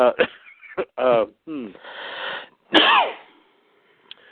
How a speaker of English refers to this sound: Gesundheit.